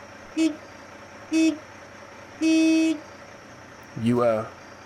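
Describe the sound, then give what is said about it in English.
A car horn honks three times at night on an abandoned old road in Mississippi, two short blasts and then a longer held one, fairly loud, followed by a brief burst of a voice. “All right, all you got to do now is honk three times.”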